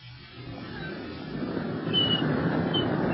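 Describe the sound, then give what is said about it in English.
A few thin, high seagull cries come through faintly over a steady rush of wind or surf, spaced a second or so apart, from gulls hanging around near a cave. “Go away, go away, you seagulls.”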